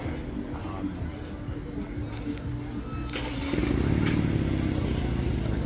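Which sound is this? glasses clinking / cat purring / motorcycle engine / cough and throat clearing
motorcycle engine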